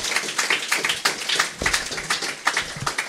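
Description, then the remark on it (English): A crowd applauds the introduction of a panelist, the co-founder of the TV network and website Channel 101, many hands clapping together in a dense, continuous patter at moderate volume, with no one speaking over it. “Yeah, that deserves applause.”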